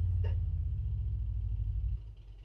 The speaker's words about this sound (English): That's a motorbike.